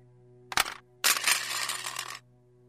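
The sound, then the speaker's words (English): A gun and a watch dropped onto the floor in the middle of a room: a sharp clunk, then after a short pause a longer metallic clatter and rattle that settles into silence, with no voices. “Drop the gun and your watch in the middle of the room.”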